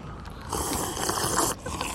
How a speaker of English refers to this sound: Porto tonic, I think it was called. Porto tonic, I have an Aperol spritz. We do an audible sip.